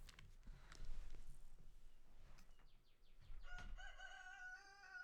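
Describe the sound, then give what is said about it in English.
A rooster named Benny crows loudly, its long harmonic call rising and holding near the end, with scattered thumps and rustling background noise before it and no talking. “Oh, did Rooster, you hear him?”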